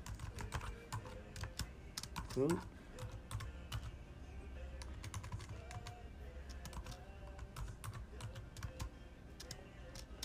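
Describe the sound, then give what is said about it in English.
Steady, rapid keyboard typing with sharp clicks spread through the whole stretch, fairly loud, with a brief murmured word and a short rising tonal sweep partway through. “Oh, yeah, very meticulous with the typing.”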